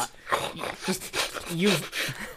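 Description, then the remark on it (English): A person imitates a dog sniffing at someone's ears, a rapid series of breathy, noisy sniffs and snorts with a few whiny voiced squeaks mixed in, loud and intimate. “mainly just like sniffing at him, like sniffing around, like basically like that thing, the things that dog do where they like sniff at your ears and you could just hear it kind of thing really loud.”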